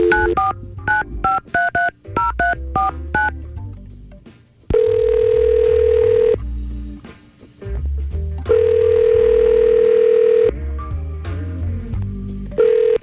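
A rapid burst of touch-tone keypad beeps as a number is dialed for a phone call from the Y100 radio show, followed by two long, steady ringback tones with pauses between, heard clearly over a low background hum and no talking.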